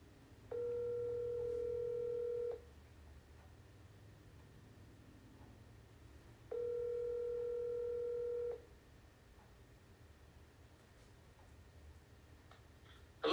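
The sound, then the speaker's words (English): An outgoing phone call rings twice, each ringback tone a steady two-second purr separated by a long pause, clear over a faint hiss with no one talking. “Hoping he answers the phone.”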